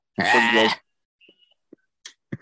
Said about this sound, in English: Just hear the sheep right there.